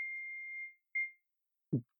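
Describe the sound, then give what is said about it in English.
A small bell, rung to signal that a question is finished, dings twice: a bright, clear ring that sustains and fades, then a second shorter strike, followed by a brief low thump. No one speaks. “Once I finish my question, we ring a bell to let you know that you have every to time.”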